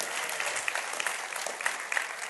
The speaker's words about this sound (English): Praise the Lord. Somebody ought to clap and give him glory. Amen.